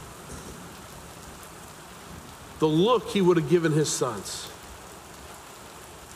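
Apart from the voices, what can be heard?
rain falling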